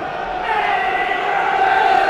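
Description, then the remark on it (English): A large stadium crowd at a football match against Bournemouth, near the 28th minute, roars and cheers in a sustained, loud swell that builds slightly and holds steady, dense and continuous without any distinct voices standing out. “That's got the crowd going.”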